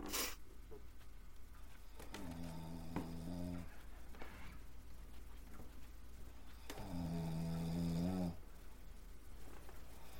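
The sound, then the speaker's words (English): A voice imitates deep, heavy snoring: two long, rumbling snores a few seconds apart, fairly loud, with quiet breathy pauses between them and no other talking. “He's like the kind of snore that someone in a deep, deep sleep does.”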